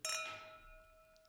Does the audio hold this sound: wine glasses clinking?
yes